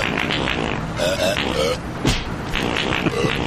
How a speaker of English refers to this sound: Sorry, I brought in some old fart sound effects. Here's from GTA.